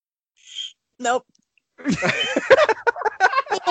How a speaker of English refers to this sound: Useless talent I have? Like a half-ass whistle. Oh, we gotta hear it.